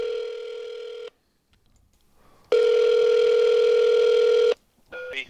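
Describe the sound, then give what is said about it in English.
A steady, buzzy telephone dial tone for a call on the Greasy Salty Hotline of the Mark Arum Show's fast food review sounds in two long stretches separated by a quiet pause, followed by a brief burst of different-pitched dialing beeps at the end. No one speaks. “Joining us live on the Greasy Salty Hotline from parts unknown, height unknown, weight.”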